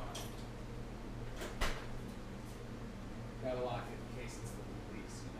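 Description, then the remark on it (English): A single sharp knock of a door closing lands early on over a steady low hum, with a brief murmur of voices shortly after. “Yeah, is there a door? Is there a duck out there? It's my door.”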